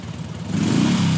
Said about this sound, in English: As the three young men revved up their bikes and sped down the road